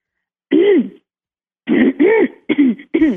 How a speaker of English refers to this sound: Did you clear your throat a lot back then?